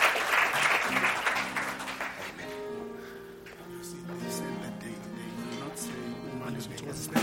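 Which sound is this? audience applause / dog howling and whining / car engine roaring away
audience applause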